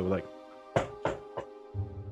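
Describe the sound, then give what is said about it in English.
Three firm, evenly spaced knocks on a slightly ajar door to a father's chambers, with a voice talking just before and resuming right after. “I'm going to knock on the door, obviously, and call out to see if anybody's in there.”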